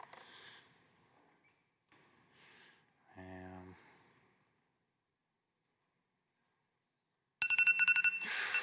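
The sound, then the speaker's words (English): An Apple iPhone ringtone suddenly plays loud near the end, bright chiming tones after a quiet pause, following some soft murmuring and a brief low hum earlier. “Most of you probably have Apple phones, I'm guessing.”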